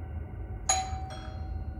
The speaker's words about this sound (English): After everything was ready, I sat in anticipation. Not too long after, the doorbell rang. It was about 10 o'clock.